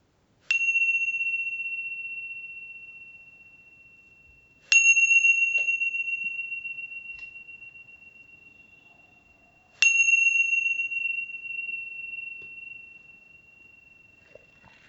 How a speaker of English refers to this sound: And then listening for the sound of the bell to open your eyes.